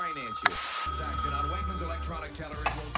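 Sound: telephone ringing unanswered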